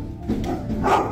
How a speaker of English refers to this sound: Dog's barking.